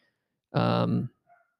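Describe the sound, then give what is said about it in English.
A single loud bark from a female dog, a drawn-out harmonic yelp lasting about half a second, followed by a faint brief sound and then quiet. “Got a dog barking. Can you hear that?”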